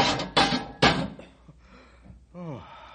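A cage door slams shut on a captured 12-foot-long creature just released from a pole and neck loop, with three loud, heavy bangs in quick succession, each ringing briefly before fading, followed by a short voiced exclamation.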